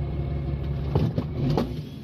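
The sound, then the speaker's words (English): A heavy truck engine rumbles low and steady as the truck starts pulling away at a truck stop, with a few brief mechanical clunks and rising engine notes over the drone. “You ever spend overnight in the truck stop? Can you relate to this one? Roll this video right here. He starts moving.”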